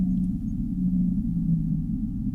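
In a submarine video game, a deep, drawn-out whale moan hums low and steady for a couple of seconds, its pitch wavering slightly over a dull underwater rumble, with no voices present.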